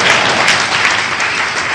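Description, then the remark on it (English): A crowd claps for the prophet in dense, sustained applause, loud and continuous with many overlapping hand claps and no speech on top. “Clap for the prophet.”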